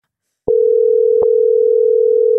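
A telephone dial tone: after a brief silence a click starts a steady, unbroken low hum that holds loud and even to the end, with one more click partway through.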